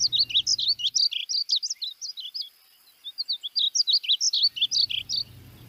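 A small songbird sings a rapid, melodious run of high, bright chirps and warbles, clear, with a brief lull midway before the song picks up again.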